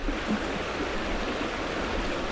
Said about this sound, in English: Surrounded by the deep rumble of 1,000 cumex of whitewater, I put my boat back in the water, tap the dirt off my feet, and climb in.